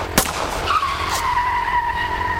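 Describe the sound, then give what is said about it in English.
Tires screech in a long, sustained squeal as a car swerves and skids during a chase, with a sharp impact-like burst near the start and steady engine roar throughout, loud. “the Range Rover's gaining on us fast because Cola's moped is clapped”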